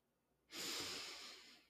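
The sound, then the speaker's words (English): After a short silence, one long, deep breath rushes in, airy and breathy, holding steady for over a second with no talking, taken as part of a guided deep-breathing exercise. “And we can do that by taking a few deep breaths. Breathing in energy that we need and breathing out anything that we no longer need.”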